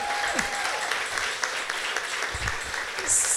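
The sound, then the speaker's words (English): A crowd applauds a person working behind the scenes in a steady, dense burst of clapping lasting a few seconds, with faint voices mixed underneath and a brief high whistle-like tone at the end. “who's right here behind the scenes, give her a clap because she.”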